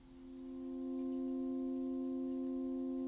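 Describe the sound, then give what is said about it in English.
An Alexa smart speaker gives off a continuous electronic tone, mid-pitched with faint overtones, that swells in over the first second and then holds steady for a few seconds while a can is rotated in front of its camera, with no one talking. “When it makes that beeping...”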